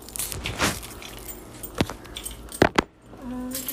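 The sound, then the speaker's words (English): Keys jangle and clink as they are handled, set down and put away, with a few sharp metallic knocks near the end and no one talking. “I'm gonna put the keys away.”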